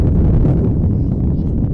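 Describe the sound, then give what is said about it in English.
Loud, steady wind gusting and buffeting the microphone during a game with a batter up for Algonac, a dense low rumble that roars without pause for a couple of seconds, with no clear speech on top. “With the wind gusting right now, that same fly ball might get out of here.”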